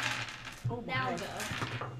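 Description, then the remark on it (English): Dice rolled for an insight check tumble and clatter across a tabletop and land on a total of 22, a quick burst of rattling hits that settles after a couple of seconds, with faint murmuring voices underneath. “Can we get all these dice out of you?”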